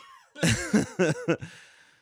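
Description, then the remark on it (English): A short burst of four strained, throaty coughs in quick succession, fairly loud, each rasping and voiced like someone choking, tapering into a breathy rasp. “I started sweating. That's how bad I choked there.”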